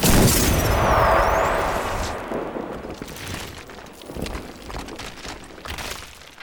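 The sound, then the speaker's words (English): A loud cannon blast erupts at once and rumbles away over a couple of seconds, followed by a few softer crackling bursts and debris-like rumble, with no voices. “Cannon out!”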